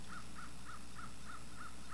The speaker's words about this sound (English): I think that's an amen from that crow, okay?